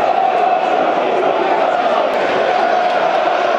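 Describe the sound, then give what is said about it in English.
A dense, steady roar of a frustrated football crowd at the Den, 61 minutes into a match, loud and unbroken, with a sustained murmur of many voices and occasional shouts rising out of the wash. “Character of the players will be tested this afternoon now, because they can hear the crowd. They'll be hearing it all, like you're hearing it.”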